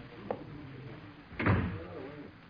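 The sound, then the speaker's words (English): A door swings shut with a single solid thud near the middle, preceded by a faint click, with a dull thump trailing off afterward; no one speaks. “Close the door”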